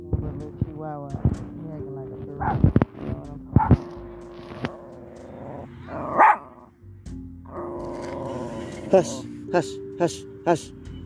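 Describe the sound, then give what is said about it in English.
A small dog weighing 7 pounds growls and then lets out a series of sharp, high yaps in quick succession while a person talks. “This dog literally weighs 7 pounds, y'all.”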